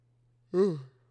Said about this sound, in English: Sorry, y'all, I'm yawning.